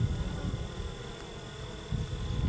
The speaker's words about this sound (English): So much bees covering it, I can't really see it. Right, that's why we're watching that hole on the end. That's where we'll be able to see her come out. Mm-hmm. They smell her through the screen. That's why they're all over the top.